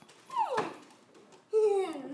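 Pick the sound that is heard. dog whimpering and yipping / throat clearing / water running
dog whimpering and yipping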